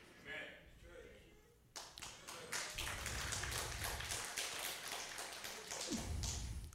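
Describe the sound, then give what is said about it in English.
A crowd breaks into applause after a brief quieter moment, many hands clapping in a dense, steady burst that stays loud for several seconds before easing slightly at the end. “We all like to clap about that one.”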